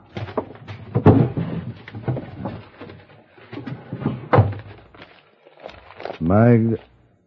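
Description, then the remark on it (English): The top drawer of a desk is pulled open with a short wooden scrape and clunk, followed by rustling papers, while a man talks. “Look in the top drawer of the desk there.”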